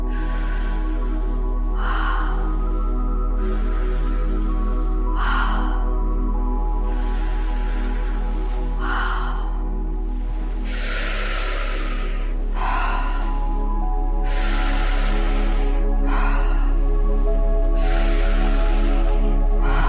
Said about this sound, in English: So it's in and out of the mouth, and then afterwards we'll turn back to nasal breathing. So it's like this, and you can just join me.